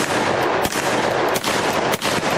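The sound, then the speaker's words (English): Loud cannon fire booms out in heavy, rumbling blasts, three or so sharp reports landing about a second apart over a constant roaring wash of noise. No one speaks. “Fire the cannon.”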